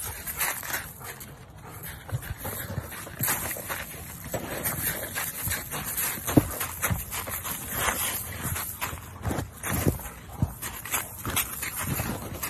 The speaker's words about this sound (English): Okay, I don't know what we're watching there. That was Shannon's dog. I always like to pull Shannon's Instagram posts.